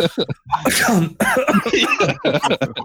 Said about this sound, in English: You appear to have a cough.